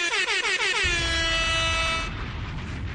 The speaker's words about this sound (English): Woo! This is definitely an air horn moment. Believe me, listen, I can't do the drops live yet still. I gotta buy another cord for that, but believe me, they're bombs, they're air horns.